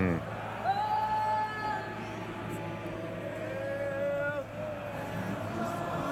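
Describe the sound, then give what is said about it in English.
A large stadium crowd sings the national anthem together when the singer cannot be heard, the massed voices rising and falling in a steady melody over a broad roar of noise, continuous and loud throughout. “But the crowd figures it out. There you go. They fill in.”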